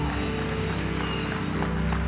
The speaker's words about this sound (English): Come on, give Jesus a big clap.